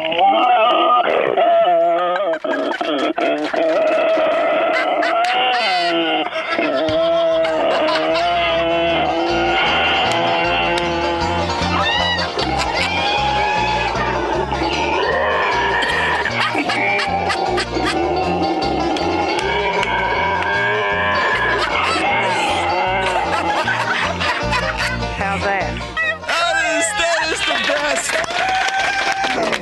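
A pig named Grunt, a guard pig, grunts and squeals loudly, almost without pause for about half a minute, its shrill, wavering cries rising and falling in pitch.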